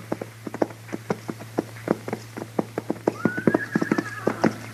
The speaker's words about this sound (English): what do you figure them horses are doing down there? It ain't right they should wander around like that without it.